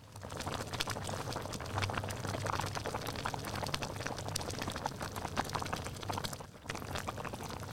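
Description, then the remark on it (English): A pot of hot pot broth bubbles and boils steadily, a dense, continuous gurgling with many small pops and a brief dip near the end before the simmer resumes. “We'll submit that sound of the bubbling to a sound library in the future.”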